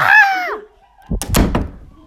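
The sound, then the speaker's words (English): A short, falling squawk-like cry, then after a brief pause a door slams shut with a loud heavy thud and a quick rattle of clattering impacts. “Quick, close it!”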